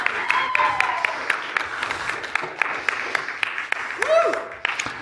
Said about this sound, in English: I want you to put a rousing applause together for the man